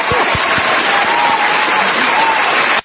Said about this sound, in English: There you go. Perfect. Look, anytime I get a chance to play our applause button, I use it. Yes, he does. Every chance he does.